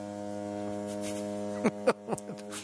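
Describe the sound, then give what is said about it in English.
A low foghorn sound effect drones steadily and unbroken for the whole stretch, rich and buzzy, with a few brief clicks and taps near the end and no talking. “It's a foghorn right there.”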